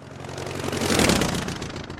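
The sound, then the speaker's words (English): A deep, droning roar of a C-130H Hercules aircraft's turboprop engines with a steady low hum, swelling to a loud peak midway and then easing slightly; no voices. “Is that a Herc? Yeah, tunnel number. So this is a C-130H.”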